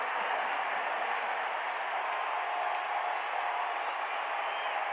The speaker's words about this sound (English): Whistle, Jazz ball. Crowd is nuts.